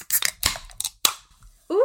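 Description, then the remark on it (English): Several sharp metallic clicks and hissing bursts as cans of Truly wild berry hard seltzer are cracked open, with a brief fizz after each pop, followed by a voice starting to speak. “Let's pop our tops.”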